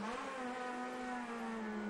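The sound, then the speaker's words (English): The four-cylinder engine of the No. 26 Freedom Motorsports Mazda race car howls at high revs, a steady, loud, buzzy drone with strong harmonics, holding nearly constant pitch throughout with no voices. “The unmistakable four-cylinder howl of the 26 Freedom Motorsports Mazda, with Christian Simchak right ahead of him.”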